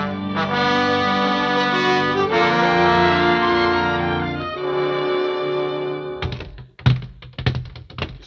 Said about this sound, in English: Don't bother me while I'm punching the bag. I told you that before.